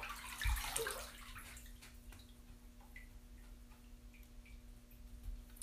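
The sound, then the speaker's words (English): Water sloshes and splashes as someone shifts in a bathtub, then settles into faint drips and small plinks over a steady low hum. No one speaks. “I'm inside of water, so you're going to hear me move.”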